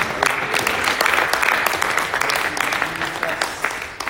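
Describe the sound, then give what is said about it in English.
A church audience applauds steadily after a prayer, giving God a round of applause, many hands clapping in a dense, continuous patter with sharp individual claps standing out, loud and sustained throughout. “Give God a good round of applause.”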